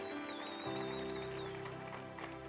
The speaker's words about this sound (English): Come on, give God a big hand clap of praise all over the house.